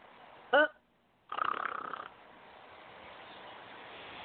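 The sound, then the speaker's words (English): A brief nasal snort followed by a longer, loud rasping snore of about a second, then a low steady background hiss. “Snorex, when you need to snore, because you've got a bore.”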